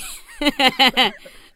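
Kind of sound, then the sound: human body sound, cough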